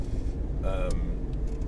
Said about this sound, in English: I record on my commute to and from work. I just ramble. I let my mind wander. And you have my voice and the sounds of the road and the rain and wipers and the tick-tocking of the indicator and the occasional clunk of my noisy car.